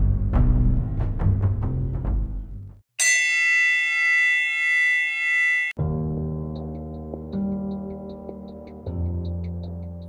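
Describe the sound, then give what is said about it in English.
A series of heavy metallic clangs gives way to a sustained, bright ringing boxing fight bell lasting a few seconds, then a low droning musical tone rolls in underneath faint chimes. “The fight bell is rung and we are in the ring.”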